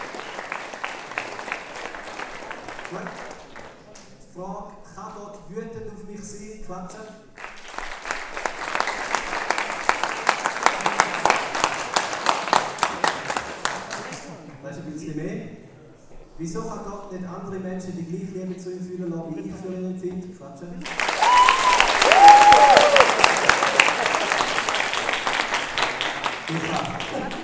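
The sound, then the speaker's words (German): An audience claps in three separate bursts of dense, steady applause, the last one loudest, with a man speaking in the pauses between them. “Ich gehe nicht mit aufstehen, wir müssen mit Klatschen machen.”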